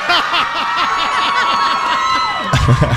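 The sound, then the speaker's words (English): A large crowd of over 4,000 people at Jenkinson's, Point Pleasant Beach, cheers loudly and continuously at the kickoff of summer, a dense roar of many overlapping voices with high whoops and shouts rising above it, swelling slightly toward the end. “I don't think I've seen this big of a crowd.”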